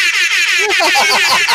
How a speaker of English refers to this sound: You gotta do the air horn for that one. My boy got it.